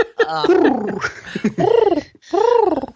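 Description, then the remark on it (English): A person vocalizes a mock news-jingle beep to introduce a news segment, producing three warbling, rising-and-falling hoots that sound more like a pigeon cooing than an electronic tone. The voice is fairly loud, with brief pauses between phrases. “That sounded less like news beeping and more like a pigeon, but okay.”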